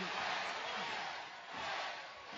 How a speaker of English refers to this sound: Again, you can hear the yes chants, but nobody's doing the hand motions for the yes chants. And there's no way that people in the crowd are doing the yes chants without doing the fucking hand motions, right?